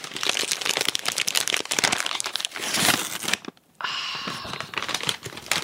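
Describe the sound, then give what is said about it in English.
Loud crinkling of a laminated snack bag of chips cooked in lard being handled, then a brief pause and a sustained ripping sound as the bag is torn open, with more crinkles after. “They're sealed in protective laminated packaging materials, unlike the plain paper bags that Saley and Bill first used.”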